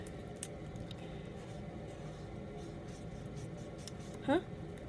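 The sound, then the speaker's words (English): A pencil scratches steadily across paper while drawing, a soft continuous rasp with small irregular strokes, interrupted near the end by a brief rising squeak. “This piece of paper. Okay, so what should I draw?”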